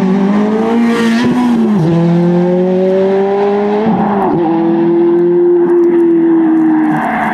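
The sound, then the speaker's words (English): A loud red Ferrari F430 sports car engine revs hard, its pitch climbing steadily and dropping briefly at a couple of gear shifts before pulling high again, with no talking. “It's a Ferrari F430 red.”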